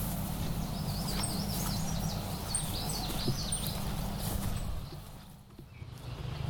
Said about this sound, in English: Well, I'm hearing a lot of cool birds, but the recording is...